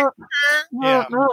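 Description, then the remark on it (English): A voice imitates a duck horn being blown with a quick series of nasal, honking quacks, some short and some drawn out, loud with brief gaps between bursts. “Yeah, but anyway, so another part of the world, as you know, … has decided to re-enter the Norman in a red and black hunting jacket blowing a duck horn.”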